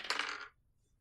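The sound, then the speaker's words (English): A quick rattle of dice clattering across a hard table for about half a second, then settling into near silence, as players roll for a perception check in a tabletop game. “Man, all this dice rolling.”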